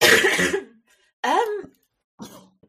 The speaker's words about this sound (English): Sorry, I just coughed in the microphone as you said that